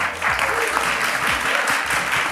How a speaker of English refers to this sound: could you please give a big round of applause for Christian, for Aoife, for Ishka, for Anthony, and for Sami